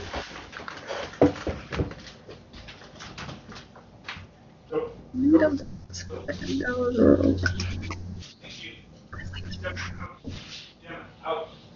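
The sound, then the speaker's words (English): Dogs whimper and whine in short, high-pitched bursts, mixed with shuffling and thumping movement and a low droning hum underneath. “I'm going to get the dogs outside real quick.”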